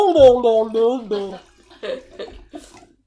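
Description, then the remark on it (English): Merlot wine is poured into a glass, with a few short gurgling splashes that come in uneven bursts. A voice sounds briefly at the start before the pouring takes over. “Anyway, pour us the wine, please. High hopes for this Merlot.”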